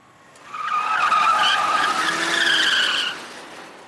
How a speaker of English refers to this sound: It's 1982, and a car full of Americans rides down a Moscow street.